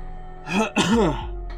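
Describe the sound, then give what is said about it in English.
A man's voice mimics someone leaning forward with hands on knees and methodically clearing his throat: a rough rasping push followed by a gravelly, wavering groan, fairly loud, lasting about a second. “And he just sort of leans forward and puts his hands on his knees for a second and, like, just sorts of tries to really methodically clear his throat.”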